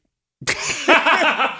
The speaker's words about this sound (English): I'm sorry. It just came out of nowhere. I never cough on the mic. Okay. Yeah. It just like caught my throat.